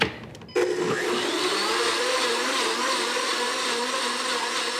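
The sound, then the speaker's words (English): A blender whirs to life after a brief moment as very hot coffee is gradually added to chocolate for pot de creme, settling into a steady, loud motor drone with a churning, liquid texture that continues without pause to the end. “Add this gradually with the blender on.”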